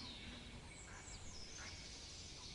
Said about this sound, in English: It sounds like there are geese. Are there geese out here by any chance?